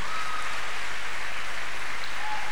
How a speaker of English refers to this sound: By the grace of God, from today, each time we clap, we should follow it up with the word glory to God. Can we clap our hands now? What's the next thing? Can we clap our hands once again?